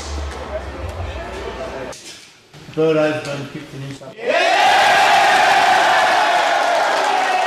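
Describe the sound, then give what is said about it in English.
After some low murmuring, one voice lets out a drawn-out shout, then a group of players bursts into loud, sustained cheering and hollering in the Bulldogs dressing room just after a game, carrying on to the end. “Exciting scenes inside the Bulldogs dressing room.”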